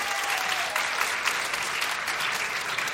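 Steady applause from an audience answering whether Valentine's Day is good for romance, a dense wash of many hands clapping at an even, fairly loud level throughout, with no voices rising above it.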